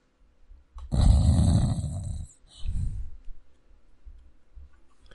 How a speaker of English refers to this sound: No, I think he's snoring.